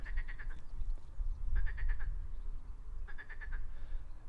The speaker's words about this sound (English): That is a marsh frog. Wow, I love that noise. It just makes you think that you're in like the African jungle or something, not Kent.